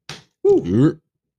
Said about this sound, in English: Mm. Slap that knee. Yeah.